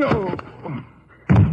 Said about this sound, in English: Hey, you slugged him with the gun.